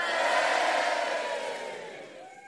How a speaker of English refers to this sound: Yeah, so I'm glad you're all as excited about it as I am this week, judging from the cheer.